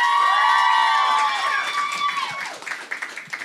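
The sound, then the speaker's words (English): A crowd cheers and applauds a guest loudly, with high whoops and sustained shouting at first, then the cheers fade into a patter of clapping and scattered claps toward the end. “So one more time, give her a big round of applause.”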